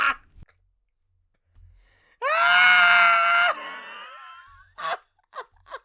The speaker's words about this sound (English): And then here is my sister yelling